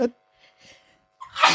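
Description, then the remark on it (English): A single loud sneeze bursts out near the end, preceded by a sharp intake and faint breathy sounds. “Okay, we're back in a sneeze loop.”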